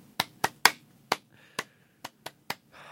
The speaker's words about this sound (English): We did claps. I don't think the people at home want to hear you clapping into a microphone.